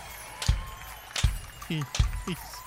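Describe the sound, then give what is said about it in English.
A metal chain jangles in three sharp rattling bursts at a slow, steady rhythm, fairly loud, with brief bits of voice in between. “Oh, you get the chain? I do.”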